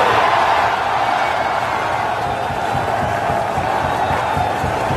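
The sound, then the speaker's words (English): A large crowd at the 18th at Augusta roars and cheers in a steady, dense wall of noise, loud and sustained throughout with no pauses or individual voices standing out. “That's quite a roar. That is a roar.”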